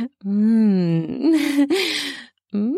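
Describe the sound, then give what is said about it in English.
A low, drawn-out growl from a human voice, made during sex, steady and voiced at first, then turning rough and breathy before fading, with another short vocal sound starting just at the end. “I roll my head back and forth and let out the low growl again.”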